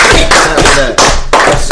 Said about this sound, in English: Clap for that. Clap for that.